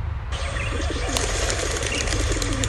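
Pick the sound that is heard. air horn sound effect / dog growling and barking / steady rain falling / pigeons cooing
pigeons cooing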